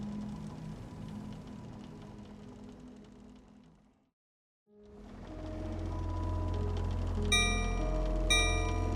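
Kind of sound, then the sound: signal or alarm, ship's bell ringing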